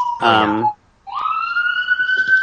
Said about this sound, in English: We're just going to have to edit out that shrieking siren that just drove by. Oh, no. That's... Sorry about that. That's part of the ambiance.